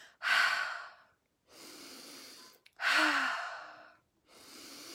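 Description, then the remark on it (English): Slow, deep breaths follow one another in a steady rhythm, each long airy inhale through the nose and exhale through the mouth audible, with short pauses between them and no talking, during a guided breathing exercise. “Breathing in all your intentions.”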